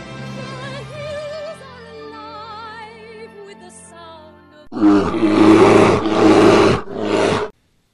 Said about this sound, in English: Roar!